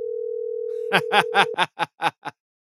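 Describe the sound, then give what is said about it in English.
A steady, unbroken ringing tone of an outgoing phone call to a wife hums for about a second and a half, overlapped near its end by a quick run of about seven short, rhythmic laugh-like bursts before going quiet. “I'm going to call the wife real quick.”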